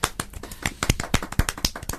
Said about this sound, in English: We're applauding ourselves like a spastic on a game show.